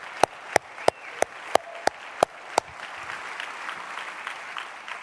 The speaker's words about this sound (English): All right, let's give these guys a round of applause.